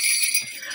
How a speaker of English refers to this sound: Well, we have a bit of a festive theme, and just to celebrate, I have sleigh bells.